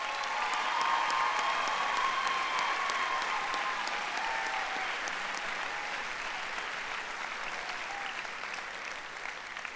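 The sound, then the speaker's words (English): A crowd applauds steadily for about ten seconds, a dense, even patter of clapping that holds at a fairly constant level and fades slightly toward the end, with no voices over it, recognizing people being honored on a campus. “All right, please recognize these people.”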